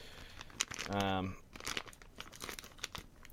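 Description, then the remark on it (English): Plastic packaging crinkles and crackles in irregular, sharp bursts as someone handles and pulls at it trying to open it, with a short voiced hum or grunt partway through. “Okay, apparently I need scissors because it's wrapped in super titanium plastic.”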